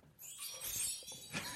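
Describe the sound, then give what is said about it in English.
A voice imitates a fairy farting: a breathy, sparkly hiss with fluttering high tones lasting over a second, capped by a short louder burst at the end. No one speaks. “Okay, this is my impression of a fairy farting.”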